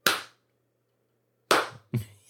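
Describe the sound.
Three loud, sharp claps ring out: one, a long pause, then two in quicker succession, like the start of a slow rhythmic pump-up team clap as done in high school football, the Remember the Titans clap. No one speaks.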